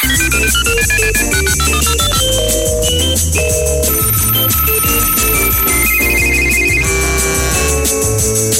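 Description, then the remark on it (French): A telephone rings over a busy, bouncy electronic tune with a steady bass beat, loud, playing continuously for several seconds with no one speaking; it is an outgoing call placed to a member of the radio station CHGA during the morning show Double Expresso. “c'est l'appel du membre où on téléphone à un membre de la radio CHGA.”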